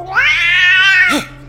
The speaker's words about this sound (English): Then I realized the hellish caterwauling was behind me